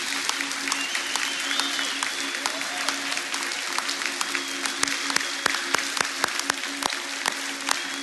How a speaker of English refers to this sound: Now, church, as they come in, we want to let our next generation know that we think they are amazing. So as they come in, you give them a big clap and a cheer.